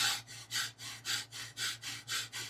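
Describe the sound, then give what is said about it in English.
Rapid, rhythmic breathing in and out through the nose during a breathing exercise, about eight quick airy breaths in a steady pulse, fairly soft, with a low constant hum underneath and no talking. “In through the nose, out through the nose, at a pace that works for you.”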